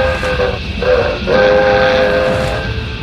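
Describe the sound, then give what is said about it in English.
A slow train rumbles loudly along the rails while its horn sounds a long, sustained chord with a couple of brief breaks, with no talking. “I'd get aboard that train if it weren't so slow.”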